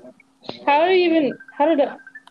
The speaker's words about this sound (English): How is someone you don't know calling you on Messenger?